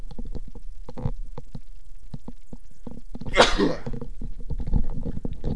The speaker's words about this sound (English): No, fuck, I'm gonna sneeze.